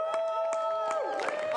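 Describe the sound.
An audience applauds with scattered sharp claps, joined by sustained high whoops and cheers, one voice sliding in pitch near the end; the noise stays steady and loud throughout.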